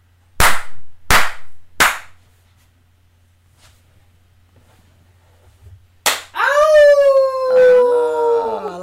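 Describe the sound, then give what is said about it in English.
Three sharp, loud hand slaps land in a steady rhythm as part of a dance move, then a pause, one more smack, and a long, wavering howl that fills the end. “and then I toss it up to a four slap with a fucking moon hop.”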